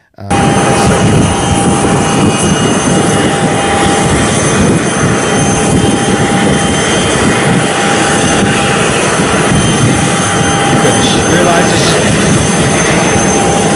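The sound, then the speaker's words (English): The engine of a private plane that Elizabeth Warren is flying in roars loudly and steadily, a dense continuous rumble with a thin, constant whine riding on top, unbroken for the whole stretch. “Elizabeth Warren doesn't want you using a private plane, but she has no problem flying in one herself.”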